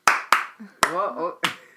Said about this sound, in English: Do we do the Eric Andre clap again? No.